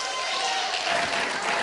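A room full of people claps and applauds a speaker's family who are present that morning, a dense, sustained patter of many hands at moderate loudness throughout the short stretch.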